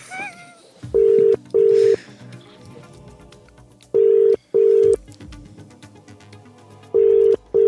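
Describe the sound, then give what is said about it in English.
An outgoing phone call, made on a phone connected to a recorder, sounds its ringing tone in three evenly spaced double rings, each a pair of short steady buzzing tones separated by a few seconds of near-quiet line hiss. “It's ringing.”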